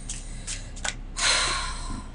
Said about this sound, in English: I am shuffling my cards.